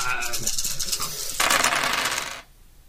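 Seven dice clatter and rattle against a hard surface, a burst of quick clicks building into a dense rolling rattle that stops abruptly, with no voices.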